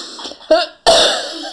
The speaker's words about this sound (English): It's so spicy. Spicy cough.